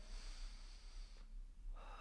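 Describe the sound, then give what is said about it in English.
A long, airy deep breath drawn in, a brief pause, then let out again, quiet with no talking, taken with eyes closed and palms up in a moment of prayer. “Take a deep breath.”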